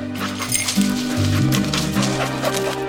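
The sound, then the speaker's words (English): A search dog whines and whimpers with a few short yips, its high, wavering cries running steadily over a low, droning background, fairly loud for a few seconds, as it is run to search for any human remains. “Just going to run this dog to see if we can find any type of human remains that are left.”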